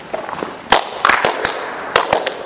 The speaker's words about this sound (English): That was a lot of echoes, or was it multiple hand claps? I can't tell.